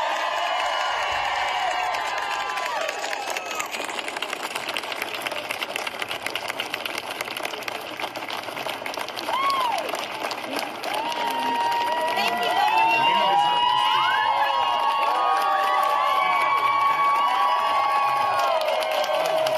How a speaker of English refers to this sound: Isn't that refreshing? Like joy, people together standing outside applauding that they can make decisions for themselves.